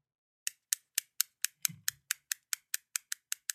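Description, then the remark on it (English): A fidget cube's buttons clicking about a dozen times in a quick, steady rhythm, each click crisp, with a soft low bump partway through and no talking. “Yep, that's the super satisfying clicking.”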